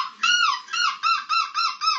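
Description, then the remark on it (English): A 21-year-old man, winner of an annual seagull screeching contest in the Netherlands, dressed as a seagull, imitates a seagull, letting out a series of six harsh, high, nasal screeches in quick succession, each a loud wavering cry with brief gaps between. “And there it is, your champion seagull screeching from the Netherlands,”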